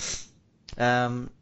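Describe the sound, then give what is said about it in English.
A quick, breathy sniffle through a congested, stuffed-up nose, followed by a soft lip-smacking click and a brief voiced murmur. “And you keep lip smacking and sniffling.”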